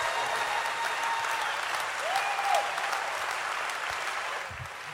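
An audience claps steadily, a dense, sustained wash of many hands that holds level for several seconds before easing slightly at the end, with a faint whistle-like tone rising briefly midway.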